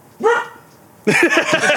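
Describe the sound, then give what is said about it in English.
A dog lets out a short, loud bark, pauses briefly, then follows with a longer, drawn-out grumbling bark. “It was the dog's version of no!”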